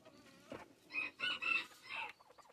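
A pet chicken named El Trumpo lets out a quick series of four or five squawking clucks, rising into a short crow-like call, fairly loud with no voices.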